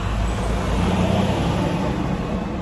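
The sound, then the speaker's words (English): Steady, rumbling road traffic with the low, heavy drone of diesel truck engines filling the whole stretch, a continuous loud roar with no pauses and no voices. “So I don't like all the noise with the diesel engines and such, the big trucks.”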